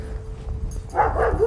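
A guard dog at a house, one of two dogs passed on a walk, lets out a quick pair of barks near the end, after a moment of low outdoor rumble and a faint steady hum.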